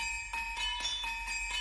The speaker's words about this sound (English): If I remember correctly, we started with the bell sounds, right? Yeah, those in the intro there. Ding dong dong ding ding dong dong.